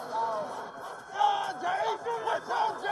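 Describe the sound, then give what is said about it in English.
A huge stadium crowd of Bills Mafia fans roars and chants as the team runs out the tunnel, a dense wall of voices with pitched shouts swelling and falling in waves, loud and continuous throughout. “The roar of Bills Mafia when the team run out the tunnel.”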